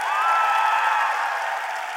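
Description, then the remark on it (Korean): An audience applauding steadily for about two seconds, a dense, even patter of many hands with a few voices cheering faintly beneath it. “오늘 박수를 열심히 치신 분들은 내일 아침에 황금똥을 쌀 수 있을 거예요.”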